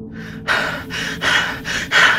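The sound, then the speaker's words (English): Heavy, rapid panting breaths, about five loud airy huffs in quick rhythm, with no talking, like someone out of breath after running; a woman breathing heavily on the far side of a room. “She could hear Jenna breathing on the far side of the room, a heavy sound, almost as if she had been running.”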